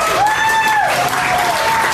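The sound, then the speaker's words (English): Steady crowd applause outside a Fairfax County school board meeting in Virginia, for a Black activist speaking to the crowd: a dense wash of clapping hands at a constant loud level, with a faint whistle-like tone gliding through and a hint of voices underneath. “And applause is for a Black Virginia activist speaking to a crowd outside of a Fairfax County school board meeting.”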